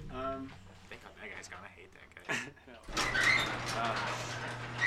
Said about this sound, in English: Hey, let's close this fucking garage.